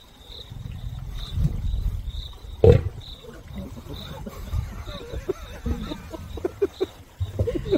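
Deep rumbling growls and a sharp roar burst from lions, an adult male trying to nap and two cubs, with smaller snarls mixed in, over a steady high chirping of insects in the background.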